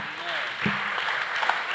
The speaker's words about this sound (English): Who agree with me? Clap for God if you agree.